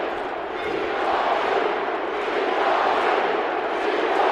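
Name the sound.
stadium crowd cheering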